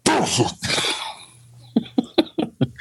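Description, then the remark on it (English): A person fakes a sneeze into a hand to hide a swear word: two loud, breathy bursts followed by a quick run of five short, sharp cough-like huffs, with no other talking. “If I hadn't been working and you know, had to have a professional decorum, you know, I would have done the fake sneeze on my hand with the BS word kind of.”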